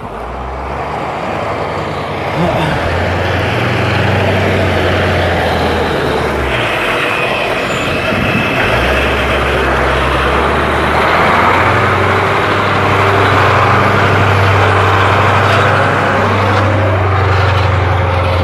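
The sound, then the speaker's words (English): The heavy engine of a really big truck rumbles, idling and revving in low, shifting tones as it slowly maneuvers back and forth making a U-turn in a really tight space, with steady road noise underneath and no talking. “Some guys making a U-turn, like a really big truck. He's trying to make a U-turn on a really tight space.”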